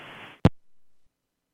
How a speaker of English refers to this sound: Her phone line was going nuts, too. Oh, it was ringing. It was ringing real hard. It was clicking and clacking. Yeah, it was ringing so hard it was clicking through. Yeah, it was ringing and ringing and ringing.